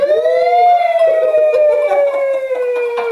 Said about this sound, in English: Dude, we do need that shit. We need a siren, we need like, tomorrow.